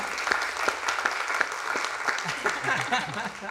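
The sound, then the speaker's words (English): A crowd applauds steadily, a dense wash of overlapping hand claps with sharp individual claps popping out, while faint voices murmur underneath. “So if we would just give them a round of applause and thank them for being with us today.”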